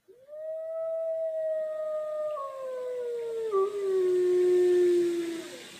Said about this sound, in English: And this animal lives in a pack, and a pack is the name for a group of this animal. So can you guess? It is a wolf.